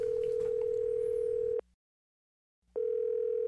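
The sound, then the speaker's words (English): A steady, loud telephone tone hums on the line during a call to 911, cuts off into about a second of silence, then comes back just as steady, with no voices. “I'm going to get him on the phone right now.”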